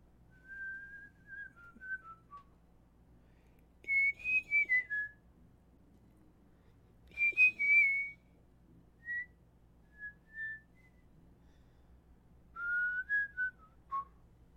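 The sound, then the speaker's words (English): A whistled song taken up by mockingjay birds: short, clear, high-pitched phrases that slide downward, echoed several times with pauses between them over a faint low hum. No one speaks. “And then almost eerily, the mockingjays take up my song.”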